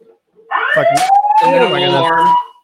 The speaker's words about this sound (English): It'll alarm four times, and then the light will keep going. And then you push the button to open up something, but I haven't gotten that far yet.